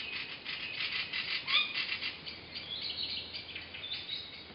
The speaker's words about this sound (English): So is that the northern spotted owl that we're hearing right now? It definitely is some owls that, you know, I found the clip on the internet. I can't say for sure it's northern spotted owls.